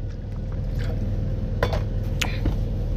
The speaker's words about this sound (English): Anyway, this coffee is good. Let me take another sip.